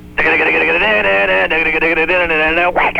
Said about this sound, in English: This is going to be a loud one. It's obnoxious and loud, is it? This is the Thrash Rock alarm clock.